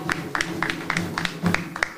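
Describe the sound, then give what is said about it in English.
An audience claps hands in praise for Dr. Milana Karenga, in a steady, rhythmic beat, about three or four crisp claps per second, over a low continuous hum of background sound. “So let's give him a hand clap of praise for Dr.”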